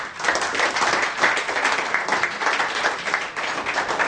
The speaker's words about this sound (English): Would you stand up and give the Lord a hand clap of praise today? Come on, man, would you come?